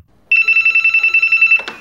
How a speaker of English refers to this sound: And there is a long, long, long wait until the phone rings.